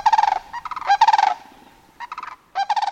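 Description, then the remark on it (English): A pair of sandhill cranes passing right overhead call loudly in several bursts of rolling, rattling bugles, the trilled notes overlapping with brief pauses between calls, their wings whispering, with no voices present. “But look, there, black on the pencil line of horizon, a first lone pair, sandhill cranes calling and crooning and their wings whispering, they pass right overhead and vanish into thin air.”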